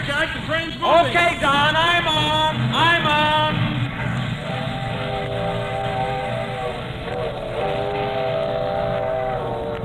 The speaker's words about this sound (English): The train's moving.